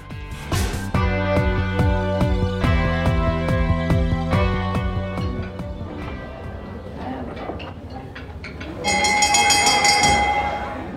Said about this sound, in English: That's the dinner bell, which means it's time for our dinner party question.